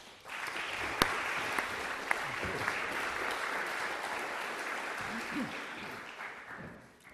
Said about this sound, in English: Thanks very much. Oh, thank you for that final clap. That's encouraging.